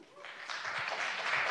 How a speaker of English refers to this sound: Again, please wait to clap until we're done.